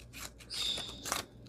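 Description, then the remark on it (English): Scissors fussy cut paper in a few short cuts, with crisp rustling and a thin metallic squeak from the blades. The cutting is fairly quiet and there is no talking. “I'm going to fussy cut. Here I go.”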